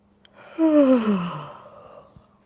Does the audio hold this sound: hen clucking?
no